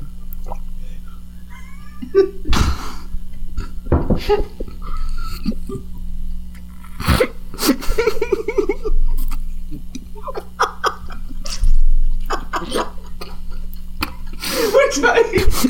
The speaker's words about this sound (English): I'm leaking water. I'm gonna choke.